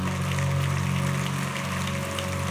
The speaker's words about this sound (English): Your clap is very weak and very suspicious. Do it with some excitement and as one that loved God.